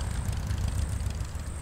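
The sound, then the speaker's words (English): A motorcycle is fired up by its rider on an evening in a New Hampshire town, its engine rumbling with a deep, steady, throbbing idle that holds at an even, moderate level throughout, with no voices. “The weekend warrior fires up her motorcycle.”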